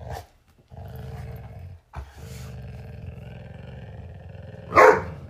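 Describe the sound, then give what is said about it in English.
Pet dogs Addie and Zappa during a tug toy game: a dog growls low and steadily in long rumbling stretches, then Zappa lets out one sharp, loud bark near the end while the growl continues. “Well, Zappa just barked an agreement or disagreement with her statements.”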